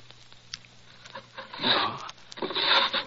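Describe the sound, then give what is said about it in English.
A wooden desk drawer in a professor's study scrapes open in two rough, grinding slides, with scattered small knocks and rustles between them as the contents are rummaged through in search of a cannula. Nobody speaks. “I'll try the drawers. It's usually in the upper right.”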